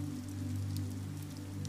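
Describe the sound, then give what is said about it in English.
Soft, steady rain patters at night on a skylight above a brass bed in a city flat, a continuous gentle drumming with a low hum beneath it and no voices. “The somnolent rain patters above the comfortable bed to offer the perfect soundtrack for dreaming.”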